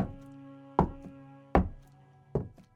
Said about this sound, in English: I wasn't alone. The footsteps made their way toward the staircase and down the stairs.